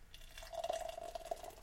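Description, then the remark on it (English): Amber beer from a just-opened container pours steadily into a glass for a second or two, a continuous liquid stream with a ringing fill tone and light fizzy splashing, forming a khaki-colored head, moderately quiet, with no voices. “And the pour.”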